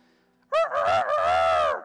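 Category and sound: bird, rooster crowing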